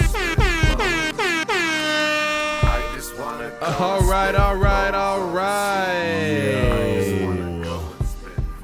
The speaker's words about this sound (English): Air horns all around.